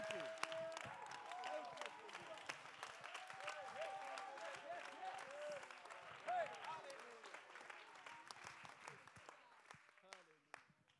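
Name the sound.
audience clapping hands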